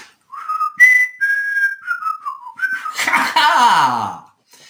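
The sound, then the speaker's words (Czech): A grandmother whistles a short, wavering tune while driving a Bugatti Veyron, bright pure notes sliding up and down, before it gives way to a loud, harsh rushing burst with a falling wail. “Policisté ječeli hrůzou, milionář se hlasitě modlil a babička si za jízdy pískala jako ďas.”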